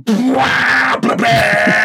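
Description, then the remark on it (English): A voice imitates a beaten-up old Honda Accord whose exhaust has split and muffler is gone, driving through quiet towns in Luxembourg: a loud, raspy, bleating roar held in two long bursts separated by a brief pause, with no other talking. “And when that happens, the car still runs, but the noise it makes is unbelievable because the muffler's gone.”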